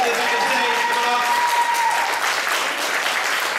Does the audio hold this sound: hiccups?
no